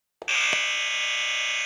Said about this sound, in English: will you sound your buzzer so we know what yours sounds like?